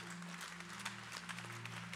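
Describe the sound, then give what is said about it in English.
An audience claps steadily for a couple of seconds, a dense patter of many hands, with a low sustained hum beneath. “I thought you would clap on that.”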